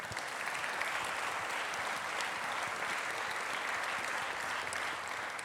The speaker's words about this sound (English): Big round of applause while he makes his way up.